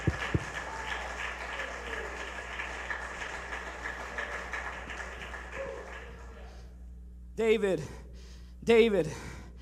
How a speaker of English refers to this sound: Come on, if you believe that, clap your hands.